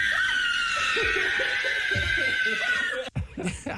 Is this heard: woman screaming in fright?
yes